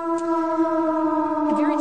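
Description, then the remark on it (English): An air raid alarm siren holds one loud, steady droning tone with strong buzzing overtones, its pitch dipping briefly near the end before leveling out again. “Where are the alarms?”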